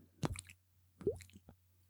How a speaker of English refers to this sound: this is where you insert like a water dripping noise